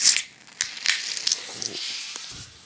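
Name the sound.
beer can opened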